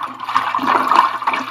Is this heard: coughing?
no